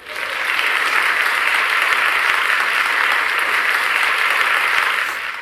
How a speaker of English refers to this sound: Let's get a round of applause for books. Let's just get a round of applause because books are very important.